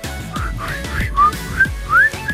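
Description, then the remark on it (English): A person whistles a short melodic phrase from a song's melody, bright rising and gliding notes in a loose rhythm, moderately loud, with no speech. “I actually do recognize the whistling sound. The one I just did. The one that's in the song.”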